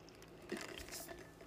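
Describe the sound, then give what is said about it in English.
Soft sipping of water from a glass, with a couple of brief wet slurps and gulps, fairly quiet and with no talking. “Maybe another freaking water break would help.”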